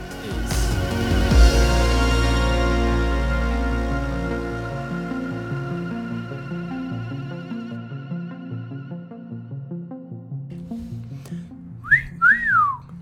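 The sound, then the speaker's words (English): A short two-part whistle, rising then falling, sounds near the end as instrumental music with a steady bass fades out; the whistle is clear, with no talking. “do you find that whistling at a woman is effective?”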